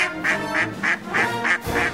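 A duck quacks six times in a quick, steady rhythm, each call a short nasal burst, fairly loud with no voices around it.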